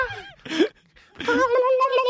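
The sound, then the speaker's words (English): Someone imitates dolphin noises with their voice: a short squeaky burst, a brief pause, then a longer, loud, warbling high-pitched squeal that wavers up and down. “We're horrible at dolphin noises.”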